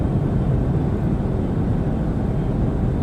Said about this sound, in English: Stolen plane. F-35.